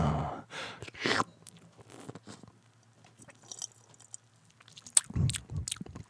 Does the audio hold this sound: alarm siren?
no